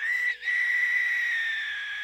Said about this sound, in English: A bird call, eerily reminiscent of a human being in pain, rang out in the distance.